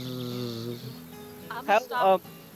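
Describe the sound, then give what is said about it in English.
A voice imitates the buzz of a wasp nest, starting with a low steady drone and then two short, louder rasping bursts near the end, fairly loud. “And you hear it before you see it. And that's where the ant tracks and trail lead into that wasp nest.”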